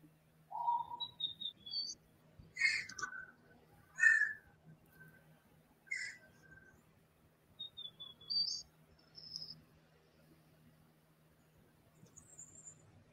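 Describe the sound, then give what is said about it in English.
Distant short, high whistles and chirpy notes, some sliding upward, repeating irregularly over a low steady hum with no voices. “You hear that whistling right there?”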